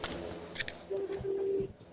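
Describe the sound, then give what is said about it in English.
A phone's incoming call tone sounds as a steady electronic beep, one short burst and then a longer one, moderately loud over faint background noise. “Whoa. Phone call right there.”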